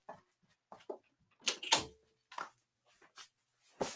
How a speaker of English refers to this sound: My dog was in my room, and she heard guests, and she, ran right into the door. Fucking dogs, I swear to God.